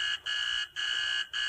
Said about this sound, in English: Ring the bell